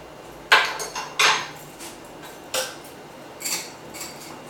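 An extra-large ice cube, frozen in a yogurt container in the fridge, is cracked into a couple of big chunks for a whiskey drink, with several sharp, bright knocks and clinks, two strong hits followed by lighter taps and clatters, with no talking.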